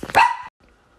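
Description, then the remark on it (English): A single sharp pet dog bark, loud, lasting about half a second and then cutting off into near silence with only a faint low murmur after. “Here we got some like interesting distraction with my dog.”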